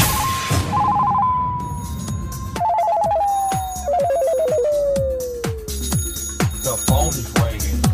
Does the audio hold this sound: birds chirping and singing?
no